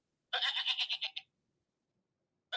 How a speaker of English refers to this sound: Yes, my ringtone is a goat. I was wondering what that was, bro. I heard that. I'm like, did I just hear that? And that was my first thought was, did I hear that? Yeah, my ringtone's a goat.